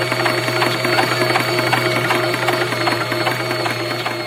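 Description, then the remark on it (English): A mechanical generator at Disneyland runs steadily with a constant hum, a thin high whistle on top and a fast, regular squeaky clatter repeating throughout, no voices. “And that generator has this very weird, squeaky, mechanical... Yeah, it's got like a whistle.”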